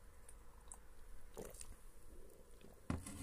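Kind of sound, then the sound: food or drink, sipping coffee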